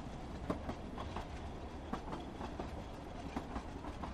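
A train rolls steadily along the rails with a rhythmic clickety-clack, periodic wheel clicks recurring over a constant low rumble, heard from inside the carriage with no one talking.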